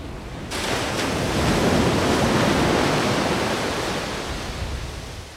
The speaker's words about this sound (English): So again, for these water waves, two or three waves are passing by every second, so that's a frequency of 2 or 3 hertz.